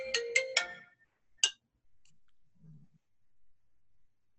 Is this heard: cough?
no